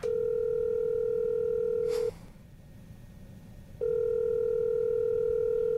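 A telephone ringback tone as a call is placed to tell a contest winner he has won. A steady, mid-pitched electronic buzz sounds for about two seconds, pauses, then starts again, with no one speaking.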